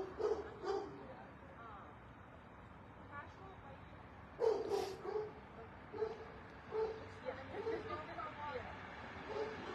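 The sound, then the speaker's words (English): Dogs bark over and over in irregular bursts on West Main Road in Portsmouth, some yips and sharper barks among them, with faint background noise and murmuring voices. “These dogs are just barking nonstop.”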